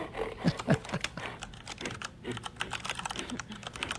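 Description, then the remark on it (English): Fast, continuous keyboard typing with a dense patter of sharp clicks, steady over several seconds, with no voices. “Jeez, what is typing out? This is the weirdest shit ever.”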